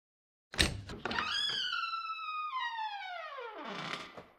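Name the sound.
door opening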